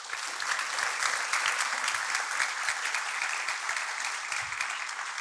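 Steady, sustained applause from an audience, dense rapid clapping filling the space at an even loudness for several seconds without any speech.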